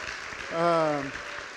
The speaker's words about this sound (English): You can clap. We had one. I didn't want the one person that clapped to feel embarrassed, so thanks for jumping in on that. And then we also have … here, who is... You can clap too.